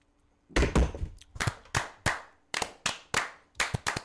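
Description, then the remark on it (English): Glasses are thumped down hard on a table during a toast in a ragged, rhythmic series of about a dozen loud knocks, some in quick pairs, with no talking over them. “I almost dropped the cannon down upon my mouse here and...”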